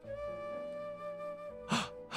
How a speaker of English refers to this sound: Gasp. Garsp. Don't gasp, I garsp.